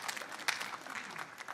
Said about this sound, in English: Yes, you ought to clap. You ought to be thankful for it.